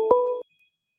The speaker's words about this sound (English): We have a phone call. Oh, we got a call.